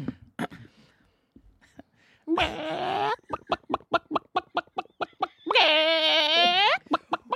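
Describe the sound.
A person imitates a chicken, with two drawn-out squawking bawks framing a quick run of rhythmic clucks, loud, with no talking during it.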